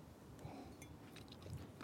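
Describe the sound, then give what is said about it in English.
A faint, subtle slurp of a fake, mimed sip from a mug, done as a demonstration of fake drinking: soft, airy mouth noises with a light clink, over quiet background hiss and no talking. “That was You did the very subtle slurp noise, which sold the shit out of it.”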